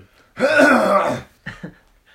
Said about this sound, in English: clear my throat for a second.